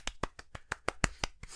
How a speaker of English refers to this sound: This is where I cue the, where I hit the sound box for my clapping. You know, I could have actually inserted clapping in there. Why didn't I do that instead of just clapping into the mic? That was lame.